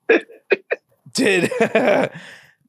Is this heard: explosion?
no